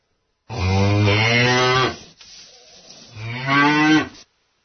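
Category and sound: animal, cow mooing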